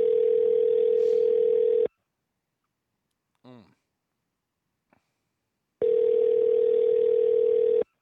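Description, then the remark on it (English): A telephone call to the California State Capitol, which is closed, ringing through: two long, steady ringback tones about four seconds apart, with a brief warbling sound and a soft click in the quiet gap between them. “Let's go ahead and call them real quick.”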